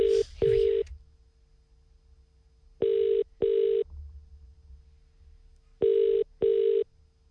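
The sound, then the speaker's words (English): A telephone ringing tone repeats in paired double bursts, three pairs separated by pauses, clear and steady, following a brief clatter of phone handling at the start. No one speaks. “I don't even know how to work the phones.”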